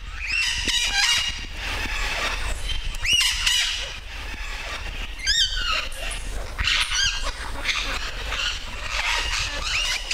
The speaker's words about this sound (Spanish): Río abajo, cotorras libres en la naturaleza.